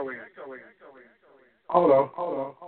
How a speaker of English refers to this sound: Hello? What's going on? Can you hear me? I can hear you, but it's echoing.